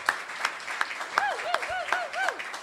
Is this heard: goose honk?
no